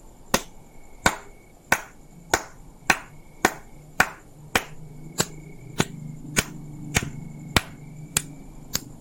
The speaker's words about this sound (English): One clap for each one. And the forest began to bustle with clapping sound.